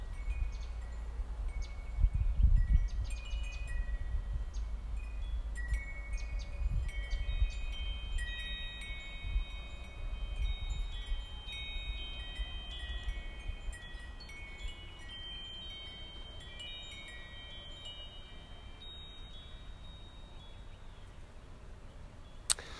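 Wind chimes ring softly over a steady low wind rumble, several clear high-pitched tones striking at staggered moments and lingering, overlapping one another. No one speaks.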